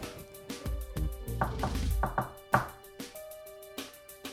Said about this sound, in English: I'm going to, on the door frame... Okay. Do a secret knock. All right.